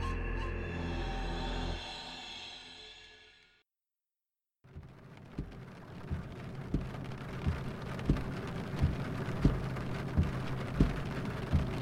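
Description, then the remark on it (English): A steady, dense hiss of heavy rain pelts a vehicle windshield on a dark highway, loud, with regular soft thumps roughly every second while the wipers work double time. It follows a brief tonal hum and a moment of silence. “Rain pelted the windshield in an unrelenting fashion as the wipers worked double time in an effort to keep up.”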